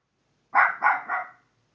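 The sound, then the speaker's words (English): A small Bichon Frise dog barks three times in quick succession, sharp, with short gaps between each bark and silence before and after. “The Merivale Bichon Frise.”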